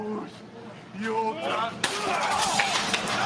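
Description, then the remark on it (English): A glass picture frame in a boiler room smashes with a sudden, loud crash, followed by a bright, clattering spray of breaking glass. People are talking just before the impact. “There just happens to be a glass picture frame in the boiler room.”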